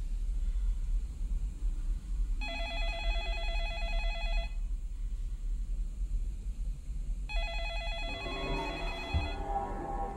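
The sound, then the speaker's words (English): A telephone rings twice, each ring a sustained electronic trill lasting about two seconds, separated by a pause, over a steady low background rumble. “Pick up the phone”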